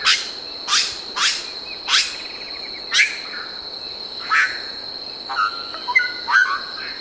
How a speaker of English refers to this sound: We leave you this week deep in the rainforest. A chorus of brilliant colored birds greets the dawn near Iguaçu Falls, close to the border of Brazil and Argentina. There are over 100 bird species in the area